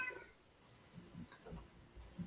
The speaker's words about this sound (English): I hear a cat. Whose cat? It's our cat.